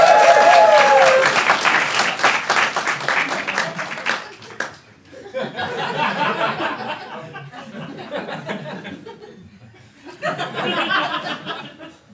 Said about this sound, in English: A round of applause